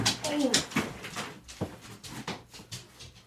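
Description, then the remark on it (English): A very large three-legged dog that wants to come in bumps and scrapes against a door, its head hitting the door as it spins around, with a few dull thuds and scratchy rustles scattered irregularly over a few seconds. “We have a dog that wants to invade. A very large one, in fact.”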